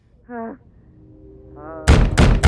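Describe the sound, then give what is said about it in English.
Loud, heavy bangs on a revolving door, two or three close together, coming after a couple of short tonal cries or whines. A woman is banging on the door, which went on for almost half an hour. “He said she banged on the revolving door for almost half an hour, and he finally threatened to call the police to shut her up.”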